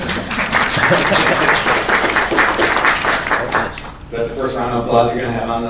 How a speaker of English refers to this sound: Is that the first round of applause you're going to have on the audience?